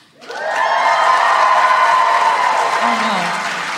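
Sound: audience cheering and applause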